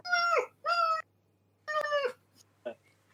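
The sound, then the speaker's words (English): A voice imitates the muffled squeaks of a small creature rummaging in a pocket as hands clamp around it: four short, high, whiny bursts, the first two back to back, a pause, then a longer one and a brief final squeak. “So you clamp your hands around your pocket, as it's rummaging around in there, and you hear a muffled squeak.”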